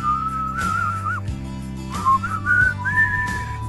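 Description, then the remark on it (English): A person whistles a short melodic tune, the pitched notes sliding and wavering over a steady low musical backing, with no talking. “got a little whistle segment. I'm going to whistle”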